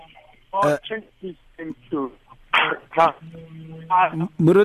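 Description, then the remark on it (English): A muffled, tinny voice over a phone line breaks up into choppy fragments, with abrupt dropouts between syllables and brief harsh bursts of distortion. “We can't hear you clearly. I don't know what is going on, but your phone is cutting a bit.”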